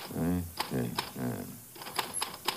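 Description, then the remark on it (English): Sharp clacks of a manual typewriter as someone types the same phrase on a sheet of paper, a few scattered keystrokes under a voice, then a quicker run of strikes on their own once the voice stops. “You are typing the same phrase.”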